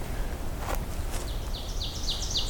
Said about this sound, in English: Oh, there we go. Oven bird.